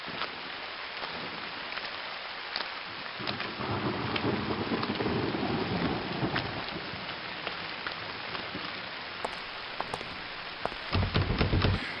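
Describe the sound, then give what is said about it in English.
Steady, dense rain hisses throughout while deep thunder rumbles through the middle, and a louder crack of thunder breaks near the end. No voices are heard. “Maybe we can wait out the rain.”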